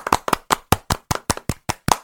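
A few people clap their hands together in a quick, steady rhythm, about ten sharp claps in two seconds, fairly loud with the claps slightly out of sync.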